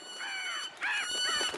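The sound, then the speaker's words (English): Geese honk and French hens squawk in a loud burst of three harsh, nasal calls in quick succession, with a faint steady high-pitched tone running underneath. “It turns out that geese and French hens are natural enemies.”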